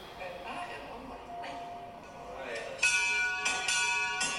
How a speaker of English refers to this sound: This was... a little video of you with the bell being rung to signify the end of your treatment.